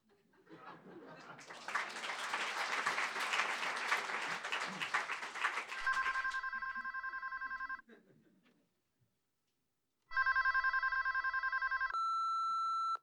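A telephone rings twice in loud, steady electronic trills separated by a brief silence, following a noisy stretch that sounds like applause.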